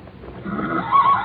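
A pony whinnies, a single drawn-out neigh with a rising, quavering tone that swells toward the end, heard on its own without talk.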